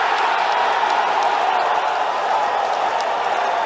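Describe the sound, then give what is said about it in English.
A golf gallery erupts in a loud, sustained roar of cheering and applause after Tiger Woods strokes a 44-foot putt, a dense wash of crowd noise that holds steady for several seconds without letting up. “Crowd got into it, Mikey.”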